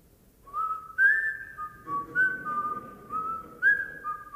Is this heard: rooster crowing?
no